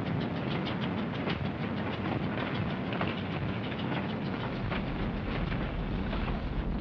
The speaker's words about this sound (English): Trains loaded with war wearies going back for salvage. Loaded with supplies for the front.